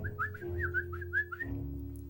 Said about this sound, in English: You whistling for?